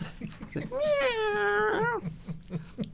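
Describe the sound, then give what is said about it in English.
A single long, drawn-out cat meow rises and holds with a tuneful, wavering pitch, lasting over a second, while faint murmuring voices and soft thumps sit underneath. “One thing I do like about this episode is the cat music.”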